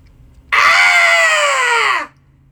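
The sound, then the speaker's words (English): Several voices let out a loud, sustained cathartic scream together on a three count, starting abruptly and holding for about a second and a half before trailing off, with no talking. “And so, yeah, let's go ahead and do a cathartic scream with us, and we will join in all together after a three count.”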